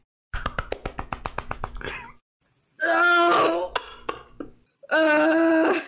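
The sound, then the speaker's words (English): A voice imitates an awful slapping noise heard in the middle of the night, a loud slapping three times over itself: a quick, even train of about a dozen sharp, loud smacking clicks, followed by two long, strained, buzzing vocal bursts. “It's just a loud slapping noise three times over itself.”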